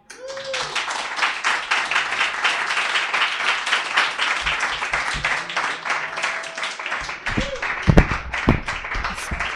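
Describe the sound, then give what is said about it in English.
A crowd applauds steadily after a reading at a literary event, a dense wash of many hands clapping at once that holds its level throughout, with a few louder claps and faint voices near the end. “Give it up one more time for”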